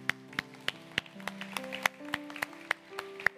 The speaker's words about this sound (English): Let's dismiss our children. Can we clap for them as they go?